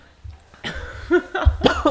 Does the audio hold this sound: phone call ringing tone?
no